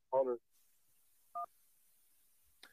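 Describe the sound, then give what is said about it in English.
A brief burst of voice, then a single clean two-note telephone keypad beep after a short pause, followed by a faint click as a call line connects. “Let's go ahead and jump right into the phone line.”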